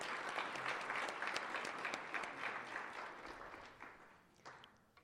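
An audience claps steadily in a dense, crackling wash of many hands for candidates and elected officials who stand up, starting loud and gradually thinning and fading over about five seconds, with no voices.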